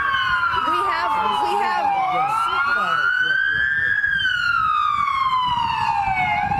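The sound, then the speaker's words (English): A loud emergency vehicle siren wails continuously in Kansas City during a police press briefing, its pitch sweeping slowly up and down, with muffled voices and rumbling background noise underneath amid the weather. “I think we're having some audio difficulties with the combination of the sirens and also the weather that's going on in Kansas City.”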